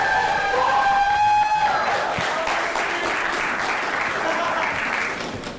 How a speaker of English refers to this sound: And obviously, like, filmmakers, you should be making a little bit more noise because these are the guys who judged your films. So give him a big round of applause.